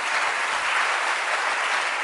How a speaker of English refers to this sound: Oh, go ahead and clap your hands for the Lord. Amen.